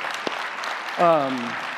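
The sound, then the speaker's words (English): An audience at Life Church claps steadily in a dense, even patter after a report on December giving to the building fund, and halfway through a single voice calls out a short, sliding cheer over the applause. “So again, you know, I'll clap if you don't want to clap, because I think it's pretty amazing that.”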